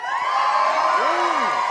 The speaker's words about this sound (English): Can we have a big cheer for anyone not from Dublin?